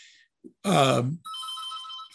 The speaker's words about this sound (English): Can you hear the phone ringing?